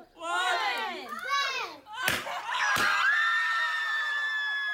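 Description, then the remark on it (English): Several voices of a family at a reveal party let out excited, high-pitched shrieks of delight, broken by two sharp pops, then settle into a sustained chorus of joyful squealing. “mostly middle-class families who gather with friends, relatives, and excitable older siblings in backyards, living rooms, and restaurants to cut cakes dyed blue, pop balloons stuffed with pink confetti, and shriek in genuine happiness and delight.”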